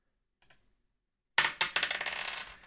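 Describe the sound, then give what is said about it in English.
A couple of faint clicks, then dice clatter loudly across a hard table, rattling in a quick burst of bright clacks that tumble and settle, rolled to pick a decade in a trivia game and landing on the 60s. No voices. “And the dice are loving the early decades.”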